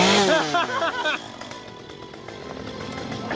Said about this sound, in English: She likes the chainsaws.